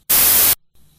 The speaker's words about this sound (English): Do we have this audio of a 7-year-old speaking to Senator Cotton? Please play it. Wait, did that work? All I heard was white static noise.